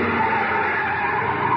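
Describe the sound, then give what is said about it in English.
A car skids hard to a stop in an alley leading toward a freight yard, tires squealing in one loud, continuous screech that holds steady for under two seconds, with no voices. “Yeah, this is as far as we can go in the car.”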